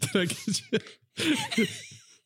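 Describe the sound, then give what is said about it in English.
A person deliberately performs an exaggerated, raspy cough imitating someone after drinking moonshine: a quick string of harsh, voiced hacks, a brief pause, then a longer wheezing burst that trails off. It is loud, with no speech. “It's just, it's one of my skills is the after moonshine cough.”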